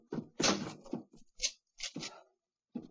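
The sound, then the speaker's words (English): A door is pushed shut and locked behind someone following Sherlock Holmes, a cluster of wooden knocks, rattles and sharp metallic clicks coming in quick bursts over a few seconds, with one last click after a short pause. “Lock the door behind you.”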